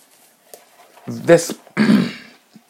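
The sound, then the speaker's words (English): A pair of harsh, throaty coughs, the second slightly longer and rougher, with quiet gaps before and after and no talking. “That's the only cough you're going to get from me this episode.”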